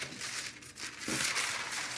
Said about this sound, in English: Okay, so you got your parchment paper, which you now basically, if you unfold it, you have a heart.